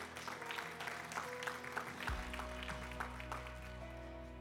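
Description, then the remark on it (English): An audience gives God a hand clap of praise, a dense, steady patter of many hands, joined partway through by a low sustained musical tone underneath, with no talking. “Why don't you guys give God a hand clap of praise?”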